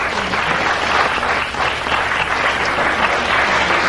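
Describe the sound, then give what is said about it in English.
An audience claps steadily for a few seconds in answer to being asked who has seen one of the unexplained things, a dense, continuous wash of hand claps with no pauses, fairly loud throughout. “People applaud if you've seen one.”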